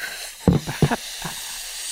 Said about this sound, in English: We're sending a message to other balloons right now by deflating this thing.